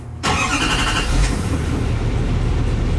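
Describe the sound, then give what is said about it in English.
An engine cranks with a quick, chirpy whirring starter for about a second, then catches and settles into a steady, smooth, low diesel rumble with audible turbo and intake that continues evenly to the end. “Smooth. Diesel. Chirpy starter.”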